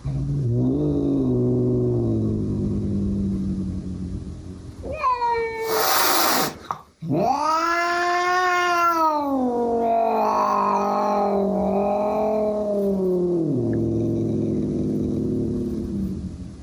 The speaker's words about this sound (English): And that was two cats having a bit of a go at it. Well, now, to be fair, it's really one cat having a go at it. Yeah.